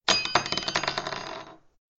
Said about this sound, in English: The humans call this a bell. When you move it, it makes a noise. She rolled the bell over and it tinkled.